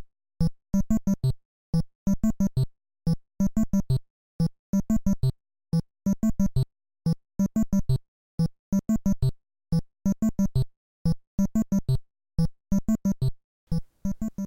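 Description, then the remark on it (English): The NES version of the 8-bit Donkey Kong stage theme, originally composed for the arcade: bright, buzzy chiptune notes in short staccato bursts, a bouncy phrase looping about every two seconds, played alone with no voices. “This is the stage theme from Donkey Kong.”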